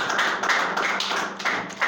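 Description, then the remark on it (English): A crowd applauds everyone who participated in a House of Glory meeting, many hands clapping together in a dense, continuous patter that stays fairly loud throughout, with no voices on top. “Can we just clap for everyone who participated in the meeting?”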